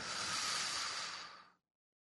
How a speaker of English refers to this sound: Oh, let's take a breath on that one.